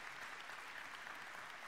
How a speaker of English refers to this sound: And I hope you just applauded in Spring Hill, too, because she'll know if you didn't. Word will get back.